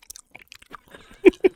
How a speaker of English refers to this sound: I like this cheesecake. It's so good. Now hear me chew it.